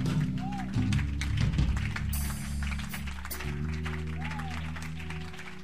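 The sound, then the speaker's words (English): A church audience claps hands in a dense, continuous patter that stays fairly loud throughout, over sustained low musical tones with voices mixed in. “Certain when we finish, you clap your hands in case your hands are empty.”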